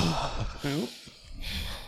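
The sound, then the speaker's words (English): A person imitates the gasping, refreshed breath after gulping down water: a sharp voiced 'ahh' inhale-exhale followed by breathy panting, fairly loud, with no other sounds around it. “Yeah, you'd be super there like, you know when you get that breathing after you finish drinking, like.”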